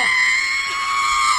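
A person lets out a loud, sustained, high-pitched scream of panic, holding steady for over a second close to the listener with no talking.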